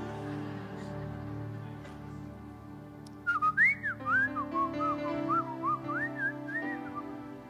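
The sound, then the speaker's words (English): Someone whistles a short, wavering melody of rising and falling notes, fairly clear, over a steady low background hum. No one speaks. “When you whistle, these specific, when you whistle like this, then.”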